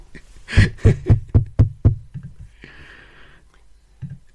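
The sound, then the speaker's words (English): Six loud, sharp knocks from a front-door knocker shaped like two boiled eggs in a steady, evenly spaced run, followed by a softer hissing rustle and a faint thud. “And straight away, I can see that the door knocker is in the form of two lovely boiled eggs.”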